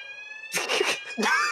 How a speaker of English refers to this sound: Hold the phone. My alarm's going off.